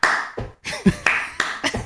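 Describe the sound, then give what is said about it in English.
A quick run of sharp hand claps mixed with heavy foot stomps in the style of music called clap stomp, about six or seven hits in under two seconds, loud, with no one speaking. “It's clap mostly stomp. Clap stomp.”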